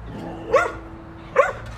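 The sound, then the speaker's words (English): Two sharp dog barks about a second apart, over a quiet background hum with no talking. “Okay, dogs, take it. The stage is yours.”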